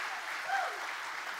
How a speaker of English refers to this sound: But can we just take a moment to honor her and just give her a great big hand clap?